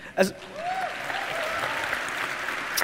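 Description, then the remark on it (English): A single sharp hand clap rings out near the start as a person claps for themselves, then another at the very end, with a faint voice and steady background hiss in between. “You clapped for yourself.”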